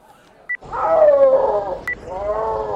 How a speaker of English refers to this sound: That's the call a snow leopard makes when it's telling other snow leopards to keep out of its territory.